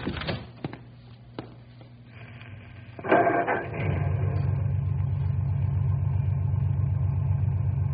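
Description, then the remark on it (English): A car engine cranks and catches after a few seconds of quiet, low mechanical noise, then settles into a steady, rumbling idle that continues with no talking. “Go ahead and start the car.”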